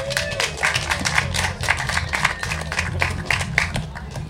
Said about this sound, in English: Yeah. Big round of applause.